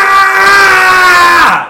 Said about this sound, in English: Deafeningly loud. A pathetic scream. Something that doesn't make sense. It's not brave by any means. But it is distracting. Especially to those with a tremendous sense of hearing.